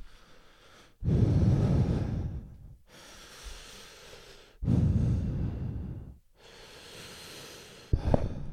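Heavy breathing: two slow cycles of loud, rushing exhales alternating with softer, hissy inhales, ending with a brief sharp breath. No one speaks.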